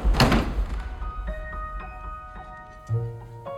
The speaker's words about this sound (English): But she had only a moment to take in the strange space before the front door closed behind Mrs. Carter and the room plunged into darkness.